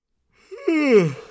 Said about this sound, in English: Okay, no, I want you to swallow that yawn in future.